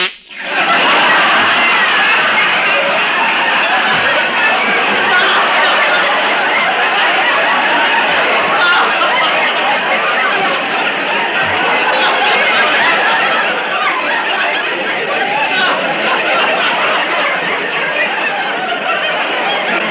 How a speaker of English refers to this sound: That canary is somewhat of a critic.